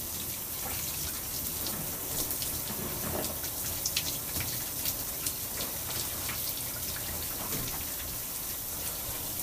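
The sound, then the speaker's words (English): Steady running water from a shower sprays and patters continuously, with small droplet splashes scattered through the hiss and no voices. “Because as soon as I hop out the shower, I'm getting ready to apply my deep conditioner.”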